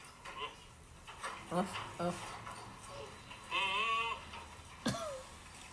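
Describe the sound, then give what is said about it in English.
A goat lets out a few short, wavering bleats with a deep, oddly human, man-like tone, the longest one quavering in the middle, against a quiet background. “This poor little goat was just sitting there with his head stuck in the fence”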